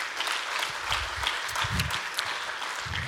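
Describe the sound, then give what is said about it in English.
An audience applauds steadily, a dense wash of many hands clapping at an even, sustained level with no voices standing out, continuing without a break for the whole stretch. “Keep clapping as I say the next one.”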